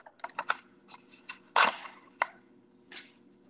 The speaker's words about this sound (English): Sounds like you're typing a book report right now